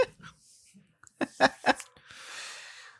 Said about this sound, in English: There's a dog barking. That's going to get picked up on the mic.